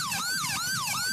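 A police car siren wails in a fast, repeating yelp, its rising and falling tone loud over a low rumble of road noise, with no one speaking.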